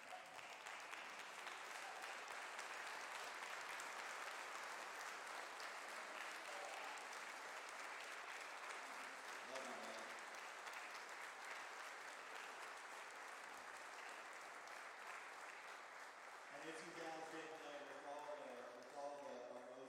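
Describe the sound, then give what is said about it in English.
A large church audience stands and claps steadily in a dense, loud wash of applause for about sixteen seconds, then it thins out as a man starts speaking. “So if you guys could please just stand to your feet and give him a round of applause.”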